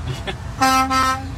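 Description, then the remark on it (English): A loud beer truck horn blares in a sustained, steady blast lasting nearly a second, rising out of low rumbling traffic noise. “Oh, again. My goodness. It's a beer truck.”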